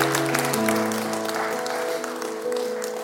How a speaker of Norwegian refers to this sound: Gi han en skikkelig applaus. Det fantastisk å høre.